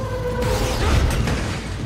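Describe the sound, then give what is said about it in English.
A loud, creepy foghorn-like blare from the Prowler creature's musical cue, likened to a foghorn, elephant or siren, with sustained brassy tones over a deep rumbling low end that swells and keeps droning for two seconds. “It's like kind a foghorn type fog thing. Foghorn, elephant, siren.”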